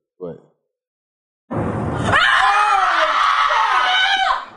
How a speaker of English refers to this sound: That's a pretty freaky scream. Yo. Why'd she yell like that? Because she just watched the towers blow up.